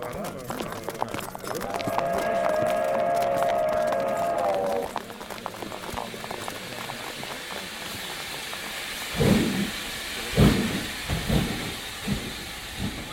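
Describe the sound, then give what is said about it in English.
A steam train pulls away, setting out for London, with a sustained whistle tone for several seconds, then hissing steam and heavy rhythmic chuffs building as the engine gets moving. “Everybody back on the train. We're about to head out to London.”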